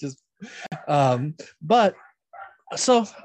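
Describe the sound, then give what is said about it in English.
A dog barks and yelps in a handful of short, pitched bursts with brief pauses between them, moderately loud, with no talking. “I think our dog liked it. You can hear that in the recording.”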